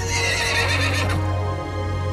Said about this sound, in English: So now you might have an idea of who pulled that pin that was keeping the horses bridled. majestic horses, hooves.